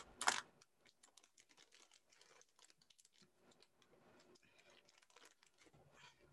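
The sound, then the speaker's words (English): Scissors snip and slice through packaging to open a package, a sharp crunch at the start followed by a quick run of small clicks, snips and crinkles, fairly quiet, with no talking. “Some scissors. Opening up the good old Davids.”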